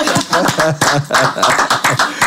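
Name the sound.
people clapping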